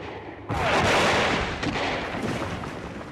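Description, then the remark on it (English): A sudden heavy blast bursts in after a low rumble, followed by a sustained roar of booming gunfire and explosions with crackling, sharp reports layered through it: a battle in the distance, with airships firing large guns at green warriors who fire back with rifles. “They were firing large guns at the green warriors. I heard huge explosions.”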